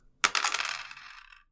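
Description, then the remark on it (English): Dice, a different set from the usual being tried out, tumble onto a hard table with a sharp first clack, then rattle and skitter quickly before settling into quiet after about a second. Fairly loud, with no talking. “Yes, we're trying different dice because the dice that I normally use are being very naughty.”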